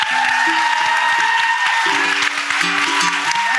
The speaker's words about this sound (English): Please give a round of applause to our guests